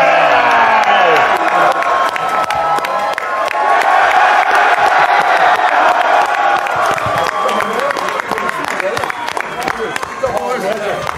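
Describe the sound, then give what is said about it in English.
A large crowd of thousands in Colorado roars with sustained cheering and clapping as Dwayne The Rock Johnson appears, a dense, loud wall of overlapping voices and applause that holds steady throughout, with shouts and whoops rising above it. “And whenever his face was seen by the incredible crowd here at Colorado, everybody raised their voice because when Rocky, Rocky, Rocky, Rocky, Rocky shows up, you know it's about to be a party.”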